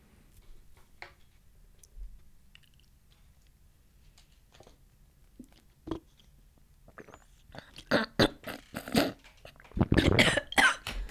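After a quiet stretch with faint clicks, someone breaks into a loud, rough coughing fit caused by water going down the wrong pipe: sharp bursts in quick clusters, growing harsher and more choked toward the end.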